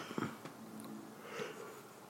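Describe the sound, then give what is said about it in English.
A quiet, drawn-out yawn: a breathy intake followed by a soft, low voiced groan that trails off, with no talking. “I just yawned because I looked at the next match that was on the card, and that's exactly what the fuck I did when it came on.”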